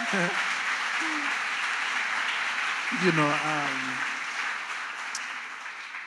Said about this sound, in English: I'm sharing things and I can see people want to clap, but they're looking around. They told us we can only smile because we don't want to distract people. I'm so glad to have that freedom and see you guys clapping for Jesus. Come on!